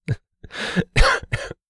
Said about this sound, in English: Every laugh is going to lead to some coughing.